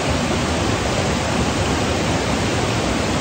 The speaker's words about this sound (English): You're on the podcast, listen to the river.